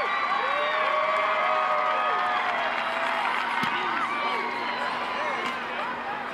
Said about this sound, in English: Awesome, awesome moment. You can hear the crowd. Everybody understands what's happening right now. This is a pretty cool moment.